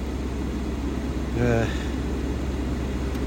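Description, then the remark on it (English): A steady whoosh of car air conditioning blowing inside a car during hot weather, with a low rumble underneath and a brief vocal murmur partway through. “Sorry about the air con there in the car.”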